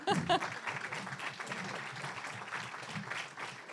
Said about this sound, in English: Let's have even more of a round of applause for our panel.